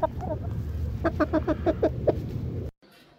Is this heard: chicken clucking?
yes